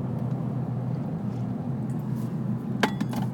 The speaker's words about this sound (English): Hold on, coffee sip.